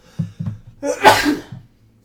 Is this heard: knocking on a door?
no